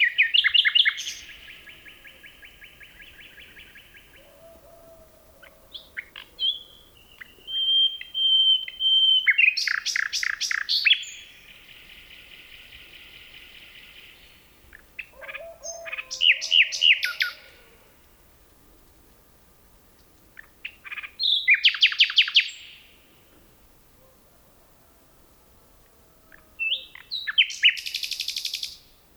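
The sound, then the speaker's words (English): Two nightingales in a forest near Kent, England sing in alternating bursts of rich, varied song: liquid trills, rapid repeated notes and piercing whistles, loud, with brief pauses between phrases and no voices present. “Phil Riddett recorded these two nightingales in a forest near Kent, England.”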